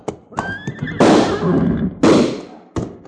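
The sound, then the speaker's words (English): A horse gives a short, high whinny as its flanks are slapped, followed by several loud, sharp cracking bursts that ring out and fade, with no one speaking. “slap his horse's flanks, quick!”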